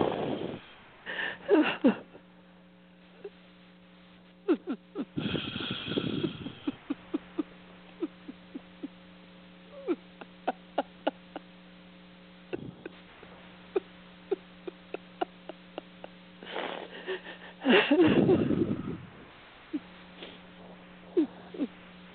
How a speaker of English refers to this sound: As you're breathing, pay attention to your palate and your upper lip.